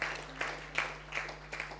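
An audience claps for Jesus in a loose, steady rhythm, with a clap roughly every half second. The claps are soft over a constant low electrical hum.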